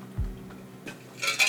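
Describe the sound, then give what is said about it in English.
Ice cubes clink inside a plastic cup of iced coffee: a soft low knock, then a few bright, glassy taps and a short rattling flurry at the end, fairly quiet, with no talking. “Hear the ice?”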